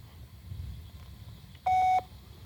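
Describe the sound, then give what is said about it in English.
A single loud, steady electronic beep lasting about a third of a second cuts in abruptly over a low background rumble: a phone voicemail beep prompting the caller to leave a message. “They made the please leave your message toad for... people sound like children.”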